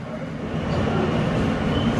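Steady, loud rumble of a Brooklyn-bound F local subway train running via the E line between the 5th Avenue/53rd Street and 7th Avenue stations, a dense low roar filling the whole clip with no voices.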